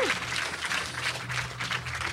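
An audience breaks into steady applause, a dense wash of many hands clapping at fairly even loudness, with a low hum running underneath.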